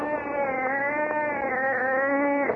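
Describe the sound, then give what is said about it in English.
A wildcat brought in for a commercial yowls in one long, unbroken cry, a loud, nasal, strongly harmonic wail that wavers slightly in pitch for a couple of seconds before cutting off. “Bring a $20,000 right down this commercial, and you bring a wildcat in here.”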